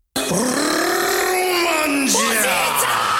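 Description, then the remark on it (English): A single voice lets out a long, loud, guttural yell lasting about three seconds, strained and rough like a battle cry, rising and wavering in pitch before cracking near the end. “That one is just, that's something you would scream as you run into battle.”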